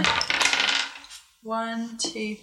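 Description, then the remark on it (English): Five custom-designed three-sided (D3) dice clatter across a hard surface in a quick burst, then one keeps spinning with a bright ringing whir before settling. Fairly loud, with no voices. “you get 10 automatically, and then you get to roll 5 of the weird D3 dice that I've designed and add that number on.”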